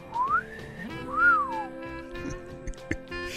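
A classic two-note wolf whistle, first sliding upward, then a rising-and-falling swoop, clear, followed by faint background clatter with no talking.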